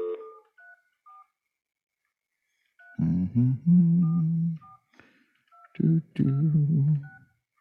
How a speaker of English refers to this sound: And in fact, what I'm going to do, just let's make a phone call. You want to? I don't know if this guy will answer or not, but let's find out. Let's just play. Here we go. I got a ringtone.